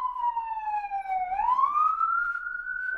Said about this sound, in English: sirens going by, and as is our way, if you hear a siren on the show, please take a drink.